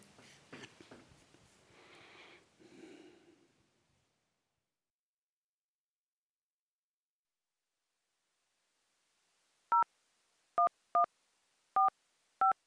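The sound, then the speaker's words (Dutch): Someone dials a telephone number: five crisp, clear touch-tone beeps at slightly uneven intervals. They follow a few seconds of faint rustling and a short silence. “Ik heb van de heemkundige kring in Heusden, waar jullie vroeger hebben gewoond, heb ik een telefoonnummer gekregen.”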